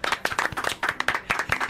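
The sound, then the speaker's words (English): A round of applause for the girls at a pageant: many hands clapping at once in a dense, crackling patter that holds steady throughout, with no voices over it. “Let's give the girls a round of applause.”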